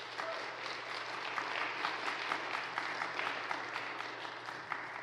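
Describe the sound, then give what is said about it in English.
A church audience claps steadily for several seconds for a woman invited forward to share her story, a dense, even patter of many hands with no voices rising above it and a faint low hum underneath. “Let's give Sarah a round of applause.”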